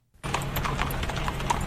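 Horses' hooves clip-clop steadily on a hard surface as about 30 riders ride through Feilding, New Zealand, several overlapping strikes in a quick, uneven rhythm, clear against a low background rumble.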